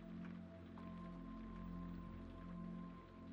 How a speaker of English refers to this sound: As the day went on, the rain tapered off, but the sense of warmth and connection that it had brought lingered on.